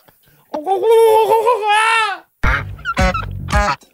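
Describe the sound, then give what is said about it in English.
Turkeys gobble loudly: a long wavering, warbling call, then a short pause and a few rapid, throaty bursts of gobbling with nobody speaking. “Ah, the turkeys are back.”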